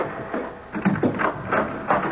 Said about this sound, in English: Papers blowing all over the place. Oh, the draft. The wind.